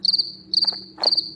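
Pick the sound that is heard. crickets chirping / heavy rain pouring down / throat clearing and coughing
crickets chirping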